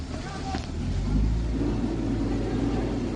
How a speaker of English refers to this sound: Because this is Dutch farmers spraying manure on government buildings. That's awesome. And the Netherlands. If you can't see this, you can hear the shit spraying.